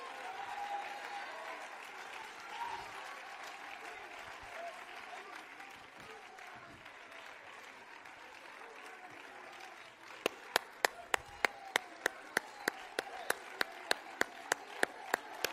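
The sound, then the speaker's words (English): A church audience applauds in a steady, continuous wash of clapping during a service, and near the end a series of sharp, loud, evenly spaced claps rings out over the general applause. “Look at me, devil, I'm clapping my hands.”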